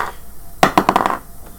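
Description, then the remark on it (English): Dice clatter across a hard table in a quick burst of sharp, bright clicks that tumble and settle within about half a second. Fairly loud, with no voices. “Like the 10, no, wait, that's, in this dice, that's a 1.”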